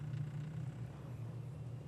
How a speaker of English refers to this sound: oh, here we go, truck's going to start naturally.